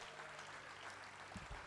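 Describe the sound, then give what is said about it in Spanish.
An audience claps and applauds, giving an ovation to God, in a steady, dense wash of sound throughout, with no clear voices on top. “Regálele una ovación a Dios.”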